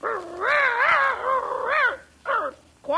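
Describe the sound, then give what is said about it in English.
A person imitates a dog, giving a long, wavering yowl followed by a couple of short, sharp barks, loud with no other talking. “You know, I think we should have got a real dog for this part.”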